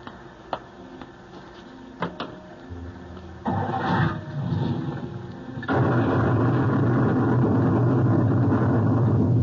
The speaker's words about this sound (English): What happened? Just as we left the coach, sir, a bolt of lightning struck. Lucky we weren't all blasted into the next world.